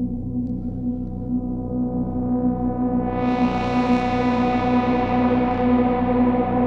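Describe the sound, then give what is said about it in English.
A sustained, buzzy synthesizer drone holds steady, then its filter sweeps open about halfway through as the filter amount is raised to plus 1.5, turning the tone brighter and fizzier, with a washy reverb tail around it. No one speaks. “Let's add some filter amount. We'll go like plus 1.5 here.”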